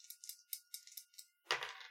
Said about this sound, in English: I'm going to roll the dice and try to change the tone to jovial.